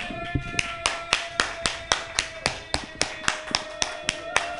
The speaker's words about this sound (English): For about 30 seconds sustained, we're going to stomp our feet. We're going to clap our hands. We're going to cheer on when I count to three.